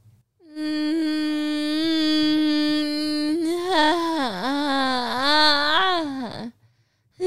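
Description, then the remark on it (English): A voice imitates how a neighbour used to moan: a whiny, nasal moan holding one steady note for a few seconds, then wavering up and down in pitch before cutting off abruptly. It is loud and alone. “But she would moan like this.”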